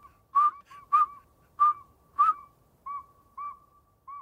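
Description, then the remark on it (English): A northern saw-whet owl gives a steady series of about seven clear, whistled toots on one pitch, evenly spaced roughly twice a second and heard alone against a quiet night background. “This nighttime whistler's a northern saw-whet owl.”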